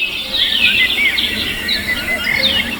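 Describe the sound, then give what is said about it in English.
A dense chorus of endangered Australian birds calling, with overlapping high chirps, trills and whistling notes that continue steadily throughout, fairly loud, with no voices present. “… is all sounds from endangered Australian birds.”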